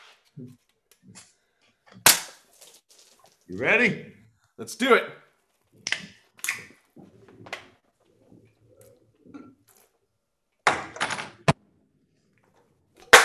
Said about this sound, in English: we're going to shotgun a Red Bull. Let's do this, baby. Cheers, baby.